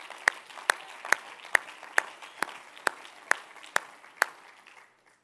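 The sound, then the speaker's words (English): An audience claps hands together in a steady, even rhythm, about ten sharp unison beats over a wash of scattered clapping, then the sound fades out to silence. “If you believe that today, would you clap your hands?”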